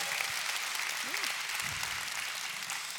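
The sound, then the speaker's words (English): A church audience applauds the announcement of a new full-time director of women's ministry, a steady, dense wash of clapping that holds at a constant level for the full three seconds, with a brief murmur of voices underneath. “Now would be a good time to applaud.”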